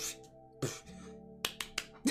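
A handful of sharp hand claps, about five crisp bursts, arriving unevenly with a quicker cluster toward the end, over a low steady hum and no talking.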